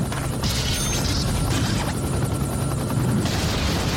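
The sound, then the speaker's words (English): A helicopter starting up in a video game, its dense, steady rotor and engine roar filling the whole moment with a rapid chopping pulse and metallic whine, loud, with no voices. “do you remember where you were when the helicopter started and Tony Hawk Pro Skater 2?”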